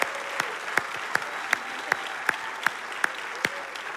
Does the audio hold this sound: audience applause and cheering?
yes